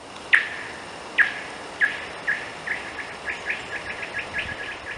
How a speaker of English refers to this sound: I wanted to check the ice thickness and looked around for a rock, but only found a red oak acorn. I tossed the acorn onto the ice, and it made a fantastic alien noise as it bounced across the frozen surface.